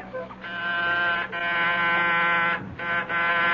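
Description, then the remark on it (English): A buzzing doorbell of apartment 10B in a luxury high-rise at 98 St. Regis rings in several long, insistent presses with brief gaps between them, a harsh, steady, loud electric buzz and no voices. “Who is ringing?”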